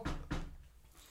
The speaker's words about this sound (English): So, what do you do? We walk up to the door and I knock on it.